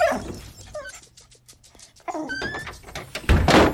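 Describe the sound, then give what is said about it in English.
An apartment door is opened by a dog's owner, letting the exhausted dog inside, with a few light clicks and a heavier thunk and rush of noise near the end, while the dog whimpers and whines in short high-pitched bursts throughout. “his mum opens the door, letting an exhausted Mr. Chuck inside”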